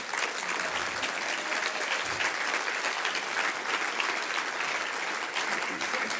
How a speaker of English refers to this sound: Guys, can we stand and honour him and give him a round of applause?